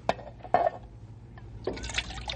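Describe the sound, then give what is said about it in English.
Water sloshes out of a water bag in two short splashes, then pours in a steady, gurgling stream into a held pan for horses and burros, fairly quiet, with no talking. “It me take water bag and help Ralph. Yeah, hold this pan, will you, Grey Wolf?”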